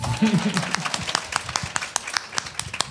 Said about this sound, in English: You can clap for that.